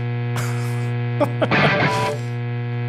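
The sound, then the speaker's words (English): An electric guitar run through a clipping distortion pedal plays a few short, gritty strums and a brief chord, all sitting on top of a loud, constant low electrical hum. “All things considered, hum aside, I think this is a cool pedal.”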